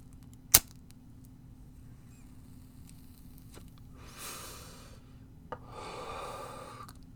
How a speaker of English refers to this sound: I'm going to light this little roach, take a little hit, and then we'll answer some questions